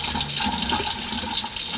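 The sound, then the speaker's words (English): A steady stream of tap water runs continuously into a sink, a broad hissing splash with faint clinks and rubbing as a glass is washed underneath with a sponge to get fingerprints off, no voices. “I'm trying to get the fingerprints off this glass because God knows the dishwasher won't do the job.”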